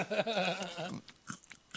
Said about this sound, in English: can you please stop chewing in the fucking microphone? That's fucking disgusting. It's really distracting.